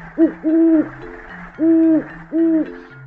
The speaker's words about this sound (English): Owls, they hoot.